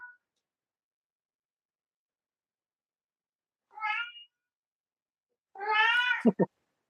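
A cat meows twice: a short meow, then after a pause a longer, drawn-out one, ending with a couple of quick sharp knocks. Silence surrounds the calls.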